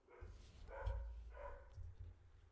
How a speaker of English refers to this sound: So just ignore the dogs barking in the background, and it'll be over soon.